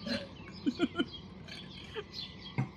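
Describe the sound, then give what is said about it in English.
Myna birds call in a quick run of three sharp squawks, followed by scattered chirps and another harsh cry against a busy outdoor background. “my family is like, oh my God, the minor birds, they are just, and they don't stop. They just cry and the squawk, and it's super loud.”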